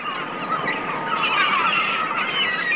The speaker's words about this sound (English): But now we'll take the whole wing thing a bit more literally, starting with a winged creature you'll find living, breeding, and feeding on every single continent in the world. The seagull.